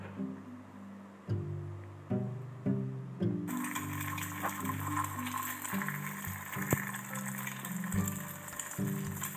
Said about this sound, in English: Very good. It's the kitchen. In the kitchen, when mom's cooking, okay, you can hear these sounds.